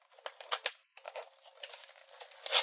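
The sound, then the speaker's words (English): Paper packaging being torn open: a few quick ripping bursts, a brief pause, then a longer stretch of tearing and crinkling that ends in a sharper rip. “I'm probably breaking this open wrong, but what the heck.”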